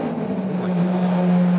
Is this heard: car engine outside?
yes